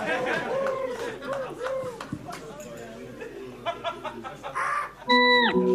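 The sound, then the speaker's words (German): Human voices make bird noises, clucking like a chicken in a freestyle round, with a run of rapid clucks and chattering squawks, ending in a loud, sharp crowing squawk. “Aber die Vogelgeräusche sind auch toll.”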